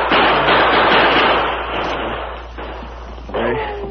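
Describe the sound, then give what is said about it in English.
A loud barrage of gunfire as bandits besiege a dugout and fire through its doorway, the shots blurring into a dense, continuous crackle for several seconds, with a brief shout-like voice rising near the end. “Rest keep pumping lead through the doorway.”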